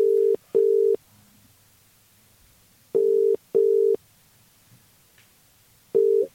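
A ringback tone on an outgoing call: steady, low electronic tones in paired bursts, repeating after a pause of about two seconds. Clear, with no talking.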